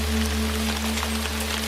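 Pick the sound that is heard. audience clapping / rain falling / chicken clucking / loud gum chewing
rain falling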